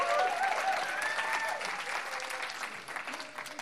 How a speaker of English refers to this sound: Can I welcome Pauline? Can you give Pauline a massive hand and a whoop and a cheer?